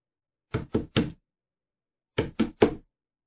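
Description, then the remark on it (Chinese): Two sets of three firm knocks on a door, made by colleagues in police uniform, clear and separated by a brief pause of silence; no voices are heard. “敲门声，马鹏耳朵一竖惊醒了，心目的收紧，从猫眼里看了看，是穿警服的同事。”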